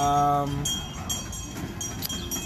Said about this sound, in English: And also, there's a train coming, everybody. Again. Again.